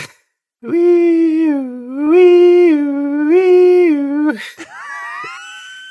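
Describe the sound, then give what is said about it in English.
A voice demonstrates the third of three ambulance siren sounds, imitating it with a sustained, alternating two-tone wail, rising and falling three times in a steady cycle, then breaking off into a brief rising squeak. “Ambulance sound three.”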